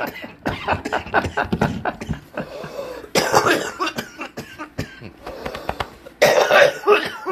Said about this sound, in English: It'd be funny to people who know me, and it wouldn't be funny to people who don't know that I fucking cough my ass off every time I fucking smoke anything.